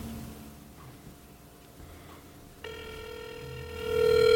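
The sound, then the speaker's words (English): A phone call to the office of David Stern rings over a speakerphone: after a quiet, murmuring start, a steady electronic ringback tone cuts in and holds, swelling louder near the end. No one speaks. “I'm going to call him right now. Can you put it on speaker?”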